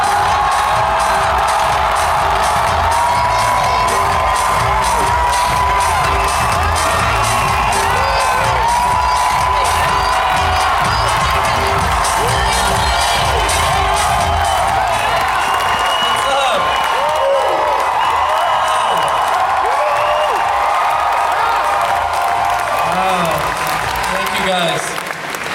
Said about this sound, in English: London, please go crazy. London, please give a mass round of applause for Brian W. Foster!